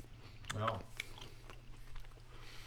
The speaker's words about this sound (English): Chew directly into the microphone if you can.